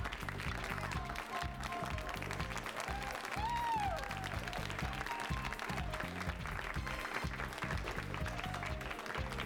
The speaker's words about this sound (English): You just clap the whole time? Seriously, is it 1960?